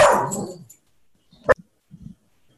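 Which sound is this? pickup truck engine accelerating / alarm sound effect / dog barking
dog barking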